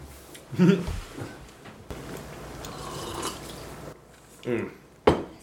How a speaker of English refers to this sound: There you go. Is the waters being set down?